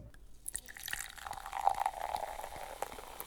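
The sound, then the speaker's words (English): Prosecco pours from a bottle into a glass at an office, a steady gurgling stream with a faint fizzing hiss, moderately loud, lasting a few seconds. “Susie and the Dragon scoop up their money, head over to the office, open a bottle of Prosecco, and start planning their company expansion.”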